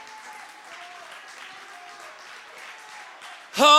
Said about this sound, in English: Would you clap your hands and magnify the name of the Lord?